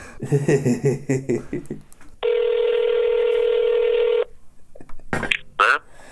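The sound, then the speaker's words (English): A rapid run of about half a dozen touch-tone dialing beeps as someone calls a friend on speakerphone, then a single long, steady ringing tone on the line, sounding thin and slightly tinny through the phone speaker. “You're on speakerphone right now and being recorded.”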